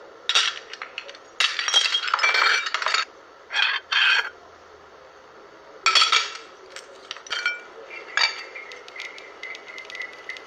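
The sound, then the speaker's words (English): A glass vase is knocked over, tipping and clattering, with several bright clinking and scraping bursts over about ten seconds, fairly loud, followed by lighter rattling as it settles. No one speaks. “And vase didn't get knocked over by itself.”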